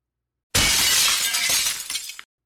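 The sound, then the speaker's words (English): A window shatters as someone or something goes out through it: a loud crash of glass bursts in suddenly, bright and hissy, then breaks into scattered tinkling fragments that clatter for about a second and a half before cutting off. No voices. “Someone, or something, went out the window.”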